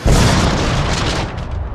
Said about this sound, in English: A plane crashes into the bus.